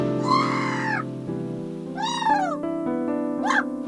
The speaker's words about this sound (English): Oh, seagull.